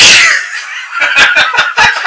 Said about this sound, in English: Bless you. What's that? That's the most random sneeze ever.